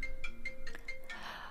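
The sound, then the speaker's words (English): A mobile phone ringtone goes off during a morning radio broadcast, playing as a quick, repeating electronic melody of bright beeping notes, fairly quiet and steady, with no one talking over it. “Is your phone on? No, I never have my phone on loud.”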